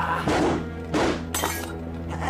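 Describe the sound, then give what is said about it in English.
Glass shatters in a few sharp bursts, each crash spraying bright, crackling fragments over a low steady hum, with the last burst the highest and most brittle. “The sound of glass breaking.”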